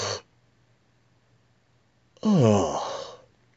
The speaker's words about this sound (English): Now do a partial yawn. In other words, you're going to start the yawn, but don't complete it.